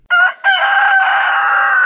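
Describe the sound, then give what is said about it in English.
A loud chicken call sound effect rings out alone: a short squawk, a brief pause, then one long, drawn-out, strained cry that holds steady to the end. “On orders from the Council of Time Council and Redundancy, all financial decisions of the Hail Ming Power Hour are now under the direct authority of our new Chief of Financial Officer, Super Cluck.”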